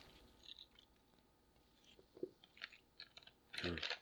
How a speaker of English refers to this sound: And I'm going to get a sip off my Mountain Dew, goodness.